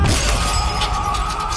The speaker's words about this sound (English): There's a sickening crack. Broken glass splinters under Sherman's back.